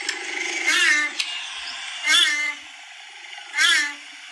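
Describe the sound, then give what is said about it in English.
A cheetah gives three short, high meows like a house cat, evenly spaced about a second and a half apart, with purring also audible, over a steady background hiss. “I found the video of the cheetah meowing”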